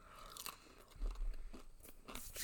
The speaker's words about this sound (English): I'm probably not going to eat a whole lot of my breakfast on this because it would just be nonsense of me chewing food.